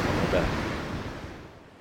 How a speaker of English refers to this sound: So as we move to the top of the second tee, you can hear the sea, the North Sea, crashing into the rock armour just down beneath the tee. And I mean, literally, just beneath the tee.